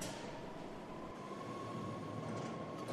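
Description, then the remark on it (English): A train rolls by with a steady, dense rumble and a faint sustained whine riding above it, holding an even loudness for the whole stretch with no voices. “Here's a train now.”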